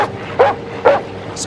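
A dog, Sandy, in the TV show Baywatch, barks at people: two sharp, loud barks about half a second apart, over a steady low background hum, followed by a brief faint high-pitched chirp.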